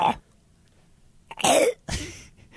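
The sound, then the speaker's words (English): A person gasps through the halting build-up of a sneeze that never arrives: a short breath, then two strained, breathy vocal bursts, with no actual sneeze and no talking. “you know when you know there's a sneezer, but it's like not happening?”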